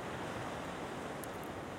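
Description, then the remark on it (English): Steady roar of surf washing along a rocky shoreline at low tide at Fitzgerald Marine Reserve in Moss Beach, California, a continuous broad hiss of breaking water with a little wind across the microphone and no voices. “We're out to Fitzgerald Marine Reserve in Moss Beach, California. We came here today to do some tide pool photography.”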